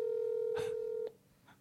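A steady electronic telephone tone hums for about a second, crossed by a brief noisy burst, then cuts off with a click, leaving a faint quiet line.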